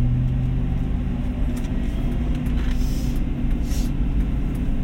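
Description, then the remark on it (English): A heavy truck engine rumbles loudly and steadily as the truck passes on the road, its deep drone constant throughout with faint hissing above and no voices. “You know that fucking truck you didn't know was going on?”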